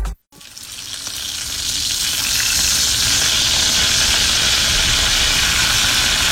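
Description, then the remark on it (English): Bacon sizzles loudly in a frying pan, a dense, steady crackle and hiss that starts after a brief gap and swells to a constant roar of popping fat. “It is National Bacon Day. You're purposely trying to get my mouth to water here, and guess what?”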